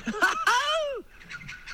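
Loud, close bird calls, honking and goose-like: a few quick squawks, then one long drawn-out cry that rises and falls, followed by several softer, more distant calls.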